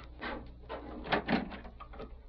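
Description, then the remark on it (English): A door opens with a short run of clunks and rattles from the latch and frame, quiet, with no voices. “Oh, well, the door. Stay there. I'll go see who it is.”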